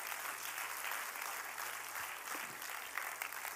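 Sustained applause from a crowd, a dense even patter of many hands clapping at once, steady and fairly loud throughout with no voices standing out.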